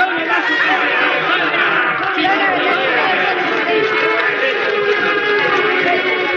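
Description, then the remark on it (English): A mob hooting and jeering in a film scene of Joan of Arc chained to the stake as fire leaps up around her: a dense, steady wall of overlapping voices and shouts, with scattered snickers and laughter, holding loud and unbroken throughout. “With Olga as Joan chained to the stake, the fire leaping up around her, and the mob hooting and jeering until Joan spoke her last words.”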